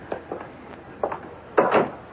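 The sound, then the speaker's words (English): A door is handled and shut: a few short wooden knocks and rattles, then a louder, fuller clunk near the end, with no voices. “And now, mademoiselle, we really must go. I mean, the door.”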